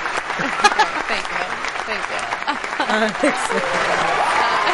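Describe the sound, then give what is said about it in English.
A burst of cued applause fills the whole stretch, steady dense clapping from a group with some voices mixed in that turn into booing, fairly loud and continuous throughout. “That would be cue applause.”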